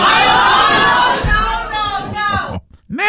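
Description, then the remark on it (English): A large, excited crowd yells and cheers loudly all at once, the roar holding for a couple of seconds before cutting off abruptly, then a single voice starts up. “Don't get that Mexican Manchu crowd fired up.”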